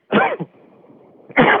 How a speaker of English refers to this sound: My lungs hurt. I've been coughing since the 21st. He's been coughing since the 21st of January.